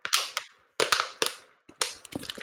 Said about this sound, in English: One second, must reach for my water bottle because my mouth is very...